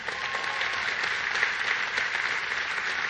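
Steady audience applause for a guest's assistant, a dense wash of many hands clapping at an even, sustained level for a few seconds with no one speaking over it.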